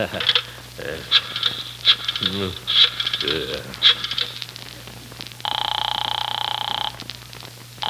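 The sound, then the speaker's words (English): A rotary telephone is dialed to call the police chief, with bursts of sharp clicking spaced about a second apart over a low hum, then a steady buzzing tone that lasts just over a second. “Still, I might just give him a buzz and find out what's going on. Yeah, why don't you? Yeah, hand me the phone.”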